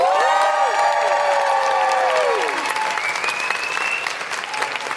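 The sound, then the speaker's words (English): A studio audience applauds loudly and steadily for a show's second guest, with several voices letting out long, rising and falling whoops and hoots over the clapping, the hooting fading after a few seconds while the applause continues. “Please put your hands together and make incredible hooting noises”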